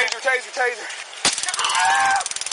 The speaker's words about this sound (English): After he's stopped, a trooper tases him, and he's pulled from the car.